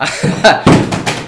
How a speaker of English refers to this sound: He almost fell off his chair. I did fall off my chair. Yeah. He did fall off. Fortunately, I'm not that high off the ground.